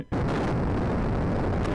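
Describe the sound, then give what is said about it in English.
A nuclear explosion sound effect bursts in suddenly after a split second of quiet, then keeps roaring as a loud, deep, sustained rumble with no let-up and no voices. “Here's where we put in the sound of the nuclear explosion.”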